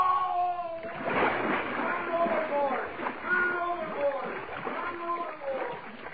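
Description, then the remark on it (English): A man falls overboard over the rail: a heavy splash into water bursts in about a second in, followed by churning, sloshing water while several voices shout urgently over it throughout. “Stop leaning over the rail. You'll fall in. You'll fall in, man. Look out! Turn overboard!”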